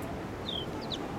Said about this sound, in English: That smaller bird call there is house sparrow. I'll walk towards them. That's a male house sparrow calling.